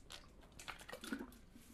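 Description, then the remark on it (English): A quiet sip of water: soft wet mouth clicks and a small gulp around the middle of a short, faint stretch, with no talking. “I just took a sip of water because God knows I'd be smacking.”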